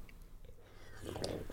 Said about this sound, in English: He takes a sip and gives a satisfied sigh.